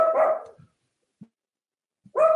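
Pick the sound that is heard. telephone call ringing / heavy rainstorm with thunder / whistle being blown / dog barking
dog barking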